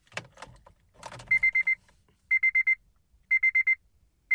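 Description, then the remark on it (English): A Honda car's key-in-ignition chime: groups of four quick, high electronic beeps repeating at steady intervals, following a brief jangle of keys at the start. “Now, this is the Honda chime when you put the keys in the ignition.”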